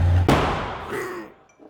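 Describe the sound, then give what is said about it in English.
A single loud gunshot cracks out after a brief low hum, its sharp blast trailing off into a fading, echoing decay. “Exploding gunfire ripped Tony from his slumber like it was waking the dead.”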